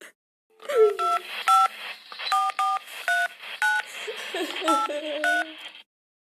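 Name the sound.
telephone keypad dialing tones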